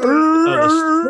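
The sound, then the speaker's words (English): A person's voice mimics a creature's warbling war cry, one sustained, loud, wavering howl lasting just over a second, unaccompanied. “And the stupid Tusken Raiders, I love it when they do the whole”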